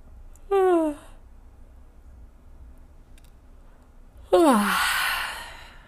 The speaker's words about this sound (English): You've just given your nervous system a tune-up by activating your vagus nerve and stimulating the attend and befriend response of your nervous system. Please note how you feel after the yawn.